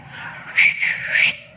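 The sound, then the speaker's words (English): A pastor whistles a short, shrill call at the back door at a wedding, a high tone lasting under a second with a couple of pulses, heard on its own with no talking over it. “goes to the back door and he whistles.”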